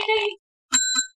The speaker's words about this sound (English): Where's that bell? You supposed to have that bell? I have that bell here.